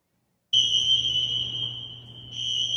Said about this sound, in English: Sounds like a normal fire alarm to me. Yeah. That means get out of the building.